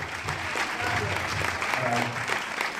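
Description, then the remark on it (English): Steady audience applause fills the space, dense clapping from a crowd with a murmur of voices underneath, continuous and fairly loud throughout. “What a crowd. Thanks very much. Thanks for coming.”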